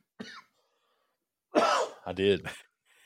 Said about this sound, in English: Told me you need to mute yourself when you're coughing, by the way.